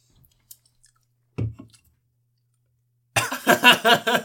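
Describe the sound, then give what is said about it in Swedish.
A brief throaty burst, a pause, then a loud fit of rapid coughs and sputters in quick uneven pulses from a person whose drink went down the wrong way, with no one talking. “Alltså nu satt jag i fel sprutet så därför jag hostar.”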